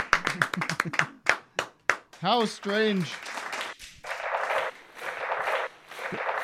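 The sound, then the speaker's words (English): A short burst of sharp hand clapping mixed with a voice speaking, followed by a steady wash of noisy applause-like sound that continues to the end. “Where's the applause?”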